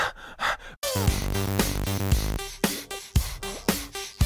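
Breathy, rhythmic panting woven into a pop track, short airy exhales pulsing on the beat, first nearly alone and then under bright synth chords and a punchy rhythm.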